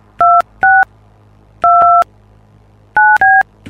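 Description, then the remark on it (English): Touch-tone keypad beeps as a phone number is dialed: five crisp dual-tone presses in uneven clusters, one held noticeably longer than the rest, over a faint low hum with no voices. “Sounded like you pushed that one number too long.”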